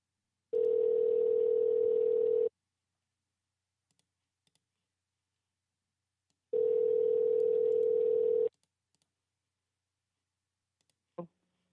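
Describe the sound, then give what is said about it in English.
Two long, steady telephone dial tones, each about two seconds, separated by a few seconds of silence, with faint clicks between and a short sharp click at the very end, as someone dials to call back a person who hung up. No one speaks. “Let's call him back.”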